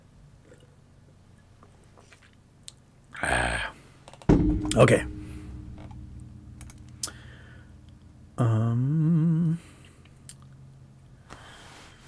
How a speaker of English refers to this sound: And I forgot to take a drink of water for a while.